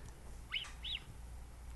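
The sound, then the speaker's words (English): A mountain lion gives two faint, high whistling chirps in quick succession, each short and slightly rising then falling, over a low steady background rumble with no talking. “Here's a whistling mountain lion.”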